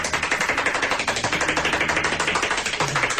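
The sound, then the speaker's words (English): Extremely rapid hand clapping, an attempt at 14 claps per second: a steady, even stream of sharp, loud claps, well over ten per second, that runs unbroken for about three seconds with no voices. “Well, you know, listen, I'd like to hear you do 14 claps per second.”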